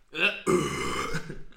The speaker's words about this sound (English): I just burped into that fucking mic. Everyone's gonna be like listening.